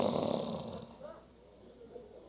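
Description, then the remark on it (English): A person imitates snoring with a single drawn-out, raspy snoring noise made with their voice, loud at first, then trailing off into quiet breathy murmurs. “She told me when she wake up in the morning, she is up while I'm still snoring.”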